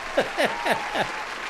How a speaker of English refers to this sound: In fact, I'll give you another round of applause because that was just too uncanny.